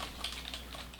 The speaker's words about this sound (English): He's typing.